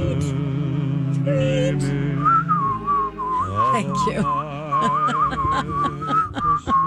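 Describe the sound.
A bright, tuneful whistle carries a melody over a backing of music, the pure high tone sliding and trilling between notes, loud and close, with a brief spoken phrase near the start.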